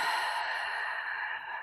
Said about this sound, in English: Let's take a deep breath in through the nose. Hold it up at the top. Open the mouth. Exhale. Let it go.